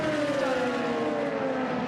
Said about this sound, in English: The fabulous sounds of multiple race cars out on the circuit. Round about 10 cars in the pit lane.